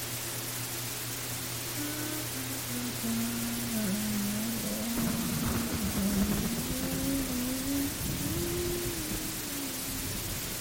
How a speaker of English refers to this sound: Do you hear the storm outside? It means he's close.